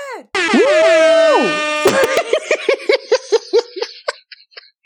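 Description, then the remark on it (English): A loud air horn sound effect: one long, blaring blast that bends in pitch, followed by a quick stuttering run of short honks that gradually fade away. “I don't think you understand that I used to be the air horn.”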